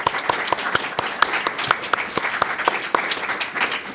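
A steady round of applause from a group, many hands clapping in a dense, crackling patter with a few sharper individual claps standing out, sustained at an even, fairly loud level throughout.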